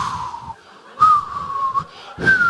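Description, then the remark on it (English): A person whistles a wavering, sliding tone in three breathy bursts, mimicking the howl of wind; the whistle is fairly loud, with airy rushes of breath between phrases. “With whistling winds.”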